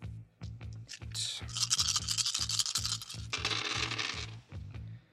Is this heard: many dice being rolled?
yes